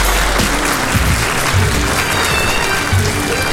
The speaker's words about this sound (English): Yes, yes, round of applause, yes, round of applause.